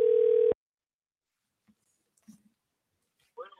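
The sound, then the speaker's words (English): A loud, steady telephone ring tone sounds for a brief half-second burst at the start as a call is placed for an interview, then cuts off into near silence with faint rustles before a voice begins at the end. “Anytime the phone rings, that's a good sign around here, huh?”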